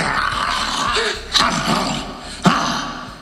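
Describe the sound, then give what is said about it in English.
A person imitates an angry 'mad dog', like a pit bull with no leash, giving a rough, breathy snarling growl for a few seconds with two sharper bursts. “That's a mad dog.”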